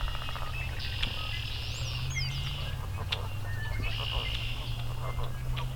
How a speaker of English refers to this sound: A starling here somewhere.